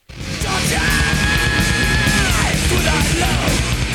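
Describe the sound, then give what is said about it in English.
A metal singer's high, sustained falsetto scream on a tritone holds a steady pitch over dense, loud heavy metal instrumentation, then bends downward and breaks off, with a shorter high wail following near the end. “And do you want to play a sound sample of him doing his falsetto tritone scream?”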